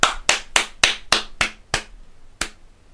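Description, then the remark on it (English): A single person claps eight times with no voices, sharp, bright slaps at a steady pace that slows slightly, with a short pause before the last clap. “That was me clapping.”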